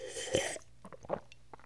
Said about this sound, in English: Take a sip. All right. A swig and a sip.